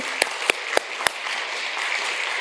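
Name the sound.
audience applauding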